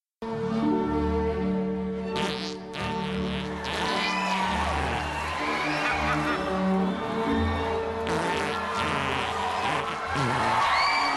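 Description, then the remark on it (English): Long, buzzy, low-pitched fart sounds made by a flatulist performing on stage follow one another almost continuously, some rising and wavering in pitch, loud, with a crowd murmuring and cheering in the background. “There is a modern flatulist. His name is Mr. Methane.”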